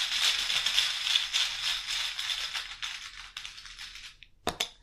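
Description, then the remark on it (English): A dense flurry of rapid papery flicks as a deck of basic weakness cards is shuffled, thinning out over several seconds, then a single sharp tap near the end. No voices. “Bear with me as I shuffle the basic weaknesses, and I'll draw from the top until I get one.”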